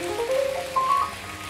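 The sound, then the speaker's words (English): A church audience applauds the musicians and band at the end of a service in a steady, dense wash of clapping, with a few high sustained cheers or whoops rising above it before it settles. “Can we say a great big thank you on a count of three and then give them a clap off and a praise?”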